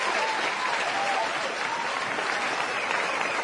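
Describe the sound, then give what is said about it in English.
Steady applause sound effect played on cue, a dense wash of many hands clapping at an even level throughout, with no pauses or talking over it. “So to Riza and the nurse at the animal clinic, the Aussie Animal Clinic, round of applause.”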